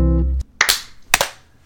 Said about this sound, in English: That was a bad sync clap. Oh well.